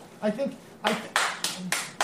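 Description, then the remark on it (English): Five loud, sharp hand claps in a steady, slightly uneven rhythm, each a bright crack that fades quickly, following a brief murmur of voice at the start. “I think you don't need to clap that loud.”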